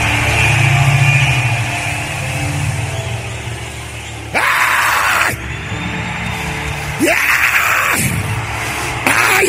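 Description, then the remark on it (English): A large crowd shouts and screams together in prayer in a continuous, loud roar, swelling into several sharper, louder surges of yelling every couple of seconds. “Come on, scream like your voice is yours. Pray.”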